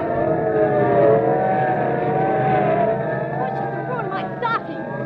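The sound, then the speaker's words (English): Police cars roar past at speed, engines and wailing tones blended into a loud, continuous rush that lingers for several seconds, with a few sharp chirps near the end. “Look, police cars, and are they rolling? And we better start hopping. They're not slowing down for anything.”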